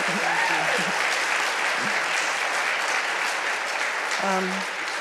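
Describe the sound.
A room full of people applauds steadily, a dense wash of clapping that stays loud throughout, with a few brief voices calling out over it.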